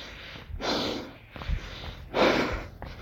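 Heavy, labored breathing through a face mask, a few loud rasping inhales and exhales in an uneven rhythm, slightly muffled, with no talking.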